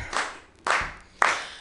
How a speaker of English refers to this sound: Anyway, I just wanted to get you guys kind of in a clap. Can you do this for me? Clap, clap, clap. You can clap.